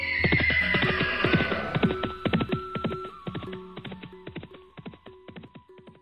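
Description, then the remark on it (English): A horse whinnies loudly at the start, then steady clip-clop hoofbeats trot along as a man mounts and rides it away, gradually growing fainter as they move away. “And once again, he mounted and went away.”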